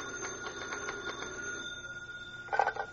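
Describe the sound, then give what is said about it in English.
An old-style telephone bell at an FBI field office rings with a rapid metallic trill that fades out, followed by the start of a second ring. It sounds steady, with no one talking. “Later that evening at the FBI field office in a nearby city, Special Agent Taylor is writing a report when his phone rings.”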